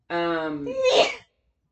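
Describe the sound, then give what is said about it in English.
A single sneeze: a drawn-out, voiced 'ah' intake that rises into a sharp, breathy burst, then silence. No one speaks. “Bless you. I'm so sorry.”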